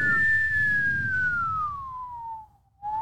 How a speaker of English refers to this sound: There we go. I can whistle again.